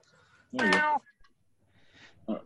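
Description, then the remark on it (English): A female domestic cat that wants to use her litter box lets out one drawn-out, wavering meow, loud, followed by quiet moments and a brief softer sound near the end. “My cat wants to use her litter box.”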